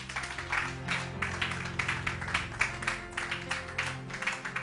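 A crowd claps hands for the Lord in a steady, rhythmic beat, the bright clapping continuous and fairly loud throughout, with a low sustained musical tone humming underneath.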